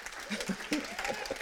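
A crowd applauds in a steady, dense patter of many hands, fairly quiet overall, with a few murmured voices and a faint chuckle mixed in.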